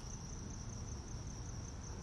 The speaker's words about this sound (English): Do the introduction, then wait for the crickets.